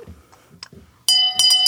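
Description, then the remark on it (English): A handheld shame bell rings out loud, struck twice in quick succession with a bright, sustained metallic ring, following a moment of faint, low background murmur. “I feel like this is a good time to shame Bell.”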